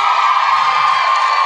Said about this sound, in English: There was like a second wave of even more intense cheering.